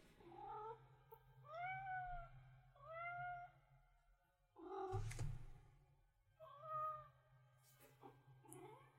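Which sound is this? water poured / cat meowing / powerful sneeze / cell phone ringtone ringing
cat meowing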